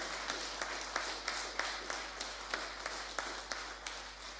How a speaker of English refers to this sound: It's wonderful, isn't it? Isn't God's blessing this? Let's applaud.